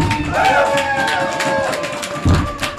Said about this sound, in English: Got a live crowd here tonight, brother. It is a big crowd tonight. I appreciate everyone that's come out tonight.